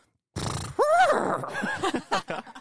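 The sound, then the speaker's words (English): A person imitates a horse: a low, breathy snort-like rumble, then a loud wavering neigh with bending pitch, trailing off in a few short choppy vocal bursts. “Oh, I can do a horse sound.”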